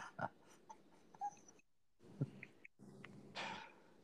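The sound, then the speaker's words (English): A dog whines and whimpers in short, uneven bursts, with thin high-pitched cries mixed with breathy snuffles and a few brief pauses between them. “My dog's just fired up on me.”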